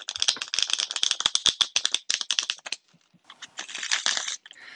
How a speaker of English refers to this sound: All right. Here's a little shuffle.